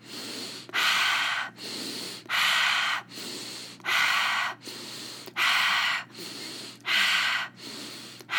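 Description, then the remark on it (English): Loud breathing: forceful deep breaths in and out, filling the belly and chest, alternating in a quick, steady rhythm, about ten strokes in a row, with no talking. “Breathing all the way into your belly, into your chest, filling all the way up and out.”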